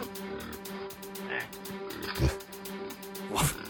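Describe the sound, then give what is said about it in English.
A group of pigs grunting and snorting, with a few louder pig squeals spaced a second or so apart over a steady low hum, moderately loud. “Do you like the pigs? I love the pigs.”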